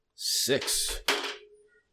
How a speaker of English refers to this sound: How is that reading, by the way, the clicking of the dice?